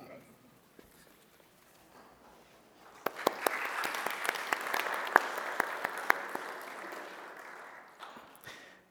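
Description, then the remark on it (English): An audience breaks into applause of thanks for service and involvement after a quiet murmur, the clapping swelling into a steady, dense patter of many hands with sharp individual claps popping out, then tapering off at the end. “that's just applause and recognition of thanking you for your service and involvement here.”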